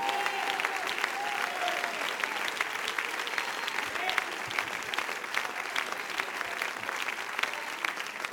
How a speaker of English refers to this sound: Give the Lord a hand clap if you believe what I'm preaching.